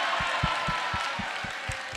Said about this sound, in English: Let's clap for them.